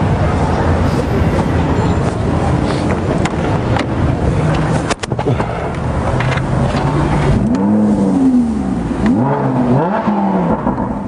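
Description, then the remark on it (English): A loud Lamborghini sports car engine rumbles, then revs in a couple of sharp rising and falling sweeps near the end, over steady background noise. “This is actually a Lamborghini.”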